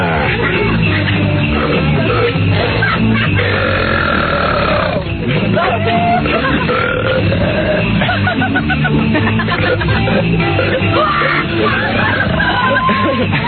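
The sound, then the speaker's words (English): Three men belch loudly at once, long overlapping croaking burps piling up over about thirteen seconds, with some yelling and grunting mixed into the sustained din. “Boy, guys do belch better than women, don't they?”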